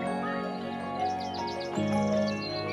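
Birdsong: a run of quick, high chirps repeats in a short rhythmic series, then returns more faintly, set over a steady, sustained tonal hum in the background.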